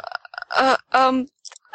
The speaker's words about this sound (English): Oh, she burped.